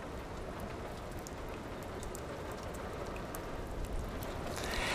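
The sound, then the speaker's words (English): Steady patter of raindrops striking a roof, a dense even crackle of many small taps with no voices, growing slightly louder and brighter toward the end. “And then miraculously, when the second movement began, if you please, there were drops of rain that you could hear coming on the roof.”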